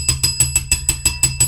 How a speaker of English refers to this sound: Excuse me while I just ring my bell.